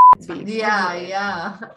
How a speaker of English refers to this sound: Yeah. As you guys know him, beep. Yeah. Bleep. Bleep, as you guys know him.